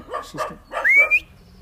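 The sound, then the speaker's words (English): A female dog in the countryside gives a few quick barks in a short burst, ending with a high rising whine as the barking fades out. “She's barking it away.”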